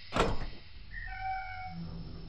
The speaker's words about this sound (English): We can now close and cycle this airlock. And now the other door.